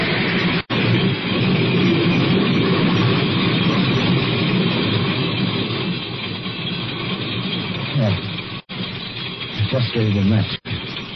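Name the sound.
train approaching and passing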